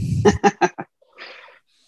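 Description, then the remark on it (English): Four quick, nasal duck quacks in a steady rhythm, loud, followed by a brief breathy rustle before it falls silent. “Quack, quack, quack.”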